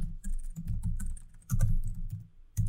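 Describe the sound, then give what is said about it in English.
Rapid, continuous typing by a person on a computer keyboard, clear, with dense overlapping key clicks in an uneven rhythm and a couple of brief pauses. No voices. “I love this typing ASMR going along with it.”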